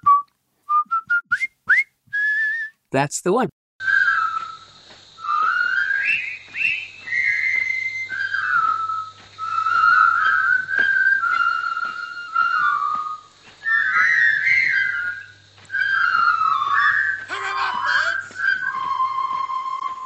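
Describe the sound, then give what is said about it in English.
A brief spoken remark, then a person whistles a jaunty marching tune from the film The Bridge on the River Kwai, a clear, continuous melody of bright pitched notes that carries on steadily for over fifteen seconds. “What was the other famous one from that movie, Bridge Over the River Kwai? Do you remember that one?”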